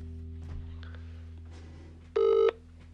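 A single short, loud electronic phone tone sounds near the end, like a dialing or ringing beep, as a phone calls a random UK number via a Google voice command, over a steady low hum and faint scattered background noise.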